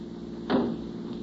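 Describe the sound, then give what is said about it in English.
A car door opens with a single short clunk and rattle over a steady low engine-like hum that continues throughout. “Open the door”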